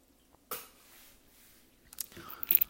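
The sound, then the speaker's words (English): Coffee swirled in a pour-over brewer: a sudden swishing rush, a soft fading slosh, then a cluster of brief, crisp rattling scrapes toward the end. Quiet overall, with no talking. “I give another swirl.”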